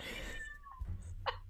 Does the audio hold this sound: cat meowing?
yes